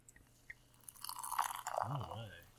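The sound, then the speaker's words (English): Beer pours steadily and builds into a crackling, hissing fizz, bright and fairly loud, with a few low gurgling glugs toward the end. The beer is highly carbonated, crystal clear and lightly gold, with a white foamy head. “Highly carbonated, very effervescent as you can hear.”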